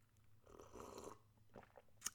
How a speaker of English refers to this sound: So we're going to take a sip of coffee. Everyone lift that coffee cup or teacup to your lips.